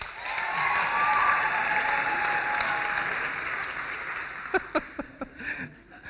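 An audience claps steadily for about four seconds to vote for the winner of a rugby ball passing competition, then the applause thins out into five or six scattered, sharp individual claps before fading.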